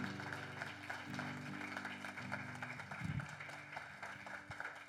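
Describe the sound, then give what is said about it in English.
A church audience applauds a man called up to the front with his mentor, in a steady, dense wash of clapping that holds for several seconds, with low sustained tones droning underneath and no speech. “Let's give Nick a round of applause with his mentor, Julian.”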